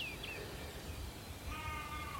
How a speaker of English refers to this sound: There are scattered sheep across the hillside here.